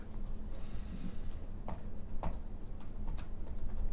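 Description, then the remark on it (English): Keyboard typing: a handful of sharp, irregular key clicks, some spaced apart and a few in quick succession, over a steady low hum with no voices. “Do you hear me typing?”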